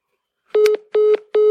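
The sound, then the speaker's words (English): Three short, loud electronic telephone tones repeat at an even pace with brief gaps between, a steady beeping signaling the end of a scam phone call. No voices are present. “It sounded like a pretty routine phone call.”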